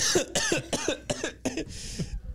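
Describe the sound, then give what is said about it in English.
A fit of harsh, hacking coughs, five or six rapid bursts in a row, ending in a long raspy, breathy wheeze. Loud and alone, with no talking. “I got the black lung pups.”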